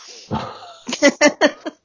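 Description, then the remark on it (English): The dog Bingo barks four or five times in a quick, uneven burst, fairly loud, after a brief rough, breathy noise at the start. “But just in case anybody can hear a dog barking in the background, it is actually Bingo.”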